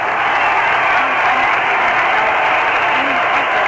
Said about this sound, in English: The Montreal Expos are taking to the field, and listen to the cheer.